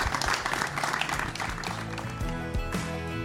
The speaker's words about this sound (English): Please, a big round of applause for tackling a very challenging topic.